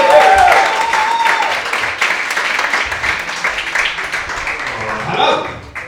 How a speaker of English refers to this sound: Stamp your feet, clap your hands, give a big warm welcome to the excellent Mr. Matt Green!